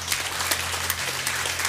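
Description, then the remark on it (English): A crowd gives the Lord a hand clap of praise after a prayer, a dense, steady patter of many hands with a few sharper claps standing out, with no voices over it. “Will you give the Lord a hand clap of praise today?”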